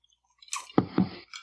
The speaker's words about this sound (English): Take a sip.